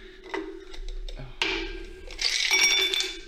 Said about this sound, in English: Let's get some ice. We need some ice first. Yeah, get some ice.